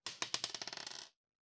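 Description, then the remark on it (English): A purple die, rolled again during a game, clatters across a hard tabletop, a quick run of sharp clicks that speed up and fade as it bounces and settles. Clear, with no voices. “Okay, the white dice were shit, but I did get a six on the purple dice. Okay, so roll that again.”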